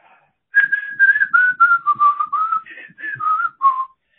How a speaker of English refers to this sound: I just want to whistle. I feel like the world is just bright and rosy.